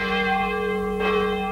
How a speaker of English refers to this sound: Why does the bell ring now? It's not prayer time.